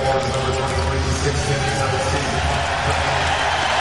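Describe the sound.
A large arena crowd at the Staples Center roars and cheers for the introduction of Anthony Davis of the visiting Pelicans, in a loud, sustained wall of noise that holds steady throughout, with voices blending into a dense, echoing din.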